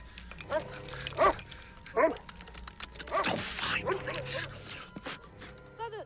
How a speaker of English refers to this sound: Fool of an animal. Fowler! Fowler, what is it? Fowler's not the right breed of dog, but what can you do?